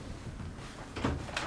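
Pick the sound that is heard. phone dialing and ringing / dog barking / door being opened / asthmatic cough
door being opened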